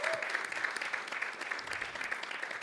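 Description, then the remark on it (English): A crowd claps steadily in a dense, sustained round of applause for their pastors, the many overlapping hand claps forming a continuous crackling wash with no voices on top. “So do me a favor and give your pastors a good round of applause on today.”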